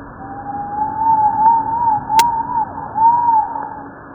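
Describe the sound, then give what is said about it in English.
A rat's ultrasonic vocalization slowed to 8% of its original frequency becomes a wavering, whistle-like tone that rises and dips like a faint siren over a low hiss, with one sharp click midway. “Has actually been slowed down to 8% of its original frequency, which allows us to hear it.”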